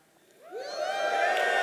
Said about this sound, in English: So can we cheer when we hear the word Mordecai?